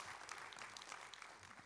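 A church audience applauds as a hand clap of praise, in a dense, steady wash of overlapping claps that stays at a fairly even loudness throughout, with no voices standing out.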